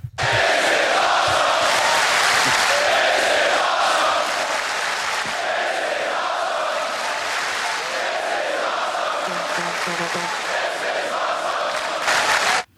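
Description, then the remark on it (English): A huge WWE crowd roars and cheers nonstop, with applause mixed into a loud, dense wall of noise that swells in chant-like waves for about thirteen seconds before cutting off. “Like, I promise you, I applaud them for that. I thank the WWE for that. Matter of fact, the WWE gets this.”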